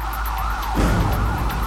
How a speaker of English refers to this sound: Desperate, the police devise a plan. At least a half a dozen cars were concentrating on where they thought this caller might be. Each car blasts its siren, on cue, hoping McLaughlin will hear it on the 911 call through Charles's mobile.